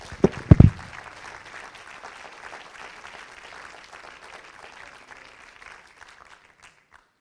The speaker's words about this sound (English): Why don't somebody give him a hand clap of praise?